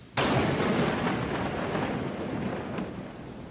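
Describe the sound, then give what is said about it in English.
A sudden loud thunderclap cracks open, then rolls on as a sustained, heavy rumble that slowly fades, powerful with no voices. “Rolling rumble booms and cracks. Storm windows rattle.”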